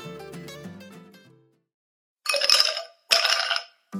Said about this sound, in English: I did a little burp. Excuse me.